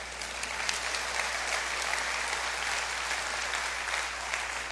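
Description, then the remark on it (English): An audience claps steadily for several seconds, a dense, even wash of many hands with no pauses or swells and no talking. “And look, yeah, that's a good place to hand clap.”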